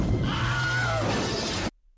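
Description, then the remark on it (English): The Wilhelm scream, a stock sound effect originally from the 1951 Western Distant Drums and repopularized in the Star Wars movies: a short, high, wavering howl of pain rises and falls over a dense wash of crashing noise, then everything cuts off abruptly into silence. “He repopularized, in the Star Wars movies, the Wilhelm scream.”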